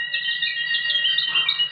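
Steady, high-pitched birdsong twitters continuously for under two seconds, clear, with a faint low hum beneath and no voices.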